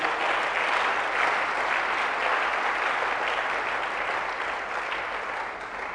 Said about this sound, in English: Why don't you clap your hands for the Lord?